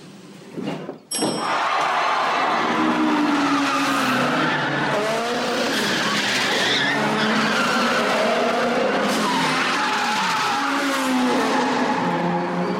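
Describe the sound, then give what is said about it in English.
Loud, sustained tire screeching from cars drifting, sliding sideways at an angle, with engines roaring underneath; the squeal wavers in pitch continuously for over ten seconds after a brief opening burst. “People are literally sliding their cars like on a certain angle.”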